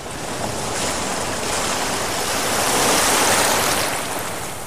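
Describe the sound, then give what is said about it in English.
Steady rushing surf washes and churns against rocks below a bluff, a broad noisy swell that rises gently and recedes over a few seconds, with no voices. “I'm brought up right at the edge of the bluff, water below.”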